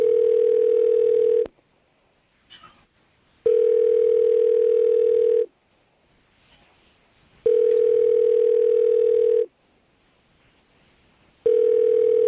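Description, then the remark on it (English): A telephone ringback tone on a call to Facebook support purrs in steady bursts, about two seconds on and two seconds off, repeating four times with quiet gaps between while the call waits to be answered. “Answer the phone already.”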